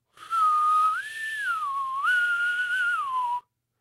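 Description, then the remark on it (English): A single loud whistle blown for about three seconds, its clear tone rising and dipping in smooth swoops before stopping abruptly. No one speaks. “I'm going to blow my whistle again.”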